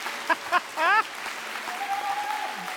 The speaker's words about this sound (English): I would love to give one more a huge celebratory cheer for those people who just shared their story.